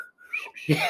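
Someone tries to whistle: a thin, wavering tone breaks into breathy, airy blowing, ending in a short voiced sound, all brief.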